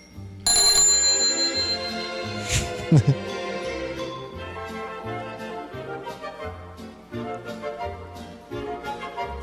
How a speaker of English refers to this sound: I keep forgetting to use my own bike bell we've got here in the studio.